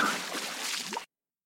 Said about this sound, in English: Yeah, the sea captain, that's the sound of the sea captain getting murdered by a dolphin at the end of that clip.